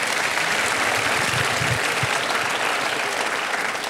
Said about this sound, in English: Give her a big round of applause real quick.